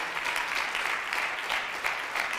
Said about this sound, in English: You know what? If y'all were clapping for me, that would be okay. Put your hands together for Jesus. Come on, clap for Jesus. Give him praise because he's worthy.